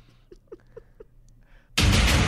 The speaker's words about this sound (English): Fart.